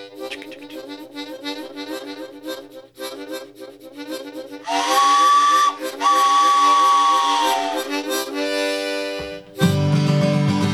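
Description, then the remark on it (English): A harmonica imitates a train, with rhythmic chugging breaths building into long, bright whistle-like wails, then a final loud, raspy chord. Played loud, no talking. “Do the train sound on the harmonica.”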